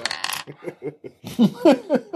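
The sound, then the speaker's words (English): A brief burst of ten dice, rolled together as a unit, clattering and rattling across a hard tabletop, quickly followed by voices and laughter. “Roller dice.”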